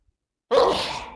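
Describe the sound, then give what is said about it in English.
A single sharp sneeze bursts out after a moment of silence, loud, with a breathy hiss trailing off afterward. No one speaks. “Bless you. You only get the 1.”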